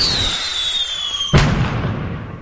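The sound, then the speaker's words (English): A firework whistles as it rises, its tone gliding slowly downward, then bursts with one sharp, loud bang followed by a rumbling, crackling tail. No voices. “I hear fireworks.”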